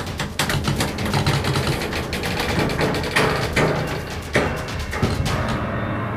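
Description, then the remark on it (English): Heavy bare feet slap and thud against the floor in an irregular series of dull impacts, heard over a dense, rumbling background with no one speaking. “And something that sounded like big, bare feet hit the floor.”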